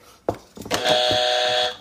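A harsh, loud game show buzzer blares for about a second in one steady, flat tone, preceded by a couple of quick knocks or clicks, with no one talking.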